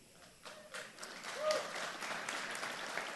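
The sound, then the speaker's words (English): A crowd breaks into applause, many hands clapping in a dense, steady patter that swells after a quiet start and holds at a moderate level, with a faint cheer or voice mixed in. “All right, I'm going to hold everybody that clapped.”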